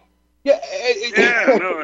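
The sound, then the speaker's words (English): A voice imitates a whimpering baby, a wavering, whiny cry that starts abruptly after a brief silence and runs on unsteadily for over a second, fairly loud. “Did you just make that noise? I thought I had to go change a baby's diaper No, no, that was me.”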